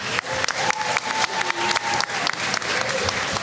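Audience applause welcoming a panel guest fills the whole stretch, a dense, steady patter of many hands clapping at a loud, even level, with a few sharper claps and a faint whistle riding on top.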